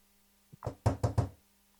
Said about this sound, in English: Oh. Somebody's knocking on his window. It's my kids. they're like knocking on the basement window. I'm like, what the heck is that?